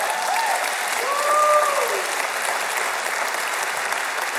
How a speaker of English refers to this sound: But that was a very polite applause for the great God of the universe.